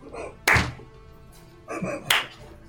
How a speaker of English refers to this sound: are you slow clapping us? Why are you slow clapping us? That's rude.